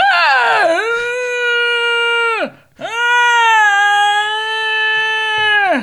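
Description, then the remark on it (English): A person's voice imitates the dog next door howling in two long, sustained, loud wails, the first sliding down then holding steady, with a brief breath between them and no other talk. “Do you remember my impression of the dog next door?”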